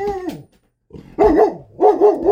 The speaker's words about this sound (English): Sorry, my dog's barking in the background here.